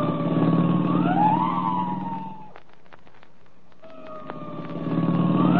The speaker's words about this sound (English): I'll give the siren all the way. You ought to be able to hear that.